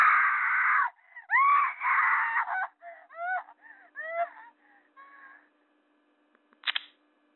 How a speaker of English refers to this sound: That was a real scream. If this is fake, this kid needs an Emmy.